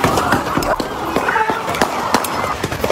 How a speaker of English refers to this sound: People in sheer panic running for their lives on Beatty's Ford Road. Now, listen again. Some of the gunfire sounds like it's coming from a machine gun.